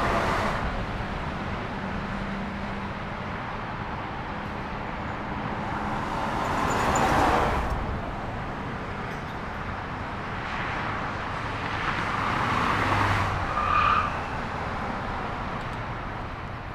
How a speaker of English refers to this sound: And as you can tell, as you'll hear in a moment, it's just the street. I used two lav microphones into a Zoom with a left and right split, and they do just sound good. It is traffic, so I mean, things you don't necessarily think about, it is traffic.